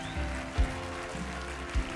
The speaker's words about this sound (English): If you receive that, give the Lord a clap offering.